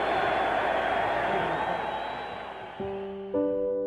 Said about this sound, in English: We were cheering for ourselves as a country after having gotten sucker punched. And it felt so good to hear people cheer for our country.